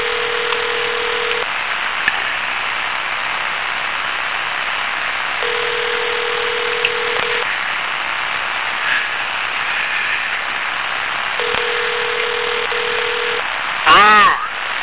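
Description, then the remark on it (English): A phone call rings out with a steady ringback tone, three long buzzes spaced several seconds apart over a hissy, muffled line; nobody picks up and the call is diverted to voicemail. “Paranormal channels are diverting us to voicemail.”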